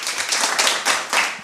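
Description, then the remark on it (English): A drum line claps together in tight unison with no count off, sharp mechanized bursts landing in a steady rhythm about every third of a second, dense and fairly loud with no voices on top. “That's the same clap that you hear every time.”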